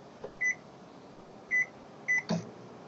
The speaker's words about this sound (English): Oh, there's some Morse code in there too. There you go, Mike. Tell us what they're saying.